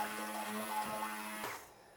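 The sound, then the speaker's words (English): A stick blender whirs steadily as it is run round a pan of curry sauce while a bit more water is added, a buzzing motor drone with a tonal hum, running without talk for over a second before it cuts off and fades to quiet. “So just running the stick blender round the pan, adding a bit more water.”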